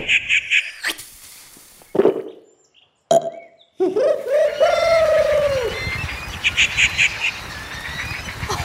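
Rufous treepie, a member of the crow family, calls: short bursts of harsh chattering notes, then a louder, drawn-out slurred call rising and falling, clear over a rough, noisy background.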